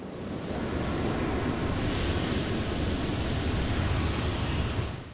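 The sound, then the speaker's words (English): Big ocean waves crash and roar continuously, a dense, loud wash of surf with some wind rumble, swelling slightly midway and holding steady throughout with no voices. “Excuse us while we now cut to some crashing waves.”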